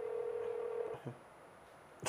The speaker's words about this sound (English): I wish she would have picked up, like, as you were saying. Yeah, you can hang that shit up. You know, once the phone rings more than four times, the person